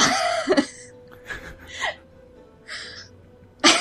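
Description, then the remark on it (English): Several short, throaty coughs, spaced out over a few seconds with brief quiet gaps, sounding deliberate rather than a continuous fit: a conspicuous cough used as a group's signal. “coughs conspicuously. Something in my throat.”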